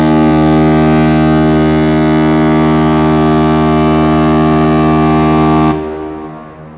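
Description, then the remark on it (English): A deep, loud foghorn sound effect, a double air horn, blares in one long, steady blast for several seconds, rich in low harmonics, then cuts off abruptly, leaving a brief fading echo. “So here it is, the foghorn.”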